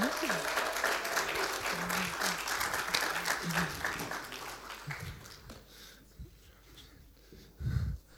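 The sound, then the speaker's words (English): An audience claps steadily for panelists coming up to the front, a dense wash of applause that fades out after about five seconds, leaving low murmuring and a brief thump or voice near the end. “Everyone, please give them a round of applause.”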